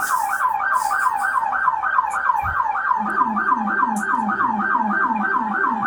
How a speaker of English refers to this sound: Turn the siren up. It's getting weird.